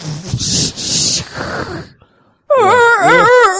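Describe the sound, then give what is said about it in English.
Breathy, huffing noises give way to a brief silence, then a loud, wavering moan swoops up and down in pitch, a person's voice imitating a whale call. “That's a whale sound in case you know.”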